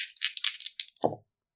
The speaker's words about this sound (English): Roll two dice.